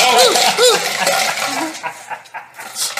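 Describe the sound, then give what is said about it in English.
A plastic bottle hits a hard surface with a loud, bright clatter, then rattles and bounces in a few quicker, softer knocks that fade over the next couple of seconds. “You just dropped a plastic bottle, and it kind of had me going. I was thinking that it was a glass one.”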